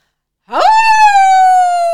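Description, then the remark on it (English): A woman's voice imitates a wolf whistle: a quick upward swoop into a long, loud held tone that sags slightly in pitch, with no other talk. “So she does another wolf whistle.”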